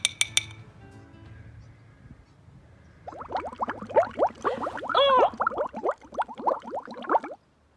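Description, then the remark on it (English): A couple of quick glassy clinks, then a few seconds of a thick paste of baking soda and water glugging as it is poured into a bottle, with bubbly gurgles and sloshing that rise and fall before stopping abruptly. “And we're going to pour that into the bottle and watch what happens.”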